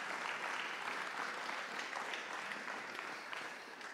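A crowd gives a steady round of applause, dense overlapping clapping from many hands that holds at an even, fairly loud level for several seconds, with no one speaking.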